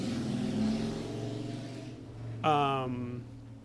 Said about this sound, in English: And I forgot what I was going to say because the motorcycle. I'll blame the motorcycle. I'll blame the motorcycle. It was loud.